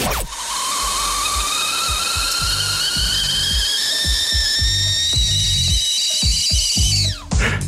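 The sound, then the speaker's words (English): A kettle whistles loud and piercing for several seconds, its shrill tone holding steady over a hiss of steam, with faint clattering beneath, then cuts off abruptly near the end. “You can't tell me you haven't noticed the high-pitched, piercing whistle of the kettle you guys play on your show between segments.”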